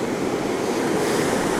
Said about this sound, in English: now I'm standing getting absolutely soaked on the east coast at Lunan Bay. A fabulous beach.